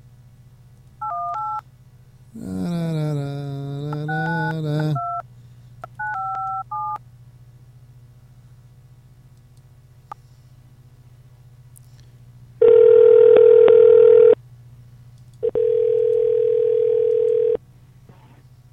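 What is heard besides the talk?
telephone dialing and ringing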